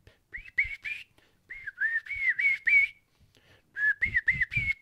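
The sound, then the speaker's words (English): A whistled kee-kee call imitating younger birds, the fall kee-kee heard from a flock of birds: three runs of short, high, rising whistle notes, each run a quick string of peeps separated by brief pauses, fairly loud and alone. “In the fall, when you're out there and you got in a flock of birds, the kiki is going to be much different.”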